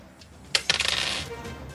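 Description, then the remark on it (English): Two dice tumble onto a hard table, rolled for damage in a tabletop game: a sharp first strike, then a quick run of bouncing clicks that slows and settles within about a second. No one speaks. “That's going to be two dice.”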